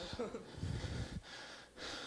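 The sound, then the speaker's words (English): Heavy, labored breathing, a rough, breathy inhale-exhale pattern with a short pause, like someone winded and out of breath. “Y'all know why I'm breathing like this?”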